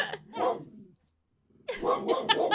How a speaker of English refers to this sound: my dog too. Barking in the background. Hey, stop your barking, ma'am.